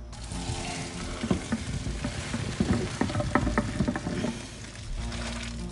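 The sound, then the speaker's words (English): Water from a pot of spaghetti is poured into a strainer in a sink: a steady, hissing rush of water with scattered metallic clinks and knocks, ending after about five seconds. No one speaks. “we're just gonna go to the sink with the strainer and pour it into the strainer”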